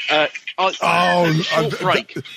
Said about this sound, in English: Oh, hold on. Phone's ringing.